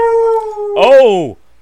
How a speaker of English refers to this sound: Oh, the dog agrees. I think the dog strongly disagrees.